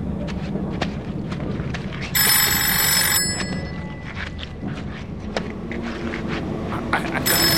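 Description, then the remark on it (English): A telephone bell rings in a bright, jangling burst lasting about a second, then starts ringing again near the end, set against a busy, rumbling background with scattered knocks and shuffling. “Do you hear that? It's a phone.”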